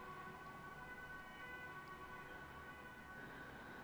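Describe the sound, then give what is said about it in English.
Emergency vehicle sirens wail faintly in the distance, a steady high tone held over a constant low rumble of background noise, with no voices present. “There are sirens baying in the distance.”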